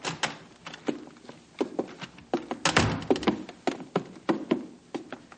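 A door opens and shuts amid a busy run of wooden thunks, knocks and latch clicks, with no one speaking.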